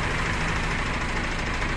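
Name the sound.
bus engine idling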